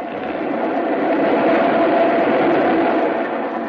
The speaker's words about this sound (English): Train coming. Oh. It's an express, Pete. It ain't stopping.